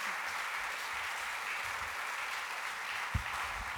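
A crowd claps for a presenter in a dense, continuous wash of applause that holds an even loudness throughout, with one brief low thump near the end.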